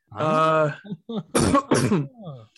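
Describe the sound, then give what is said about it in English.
A drawn-out, voiced throat clearing, followed by two harsh, noisy coughs in quick succession and a short trailing rasp, with no talking. “Sorry, I have a little bit of a cough.”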